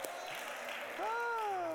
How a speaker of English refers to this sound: You all clap, like I said, give a clap for Jesus, but you said give a clap for summer. Lord have mercy.